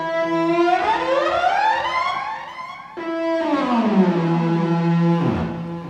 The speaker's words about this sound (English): So, I've got it set up, and I think it's just like on a guitar kind of distortion sound.